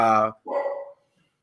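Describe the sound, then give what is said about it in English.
A dog barks twice in quick succession, a loud, sharp bark followed by a longer, drawn-out one, then quiet. “be quiet. I'm dog sitting.”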